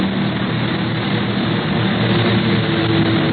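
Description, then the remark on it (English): A propeller plane roars loud in a steep dive, its engine a steady, dense drone with a low humming tone that holds throughout, with no voices. “He's going into a nosedive.”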